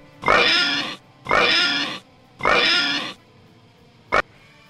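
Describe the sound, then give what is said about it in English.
Three loud, drawn-out pig oinks in a steady rhythm, each squealing, followed by a brief sharp snort-like burst at the end. No talking. “But, okay, so I gave it a 3-2-5 oinks.”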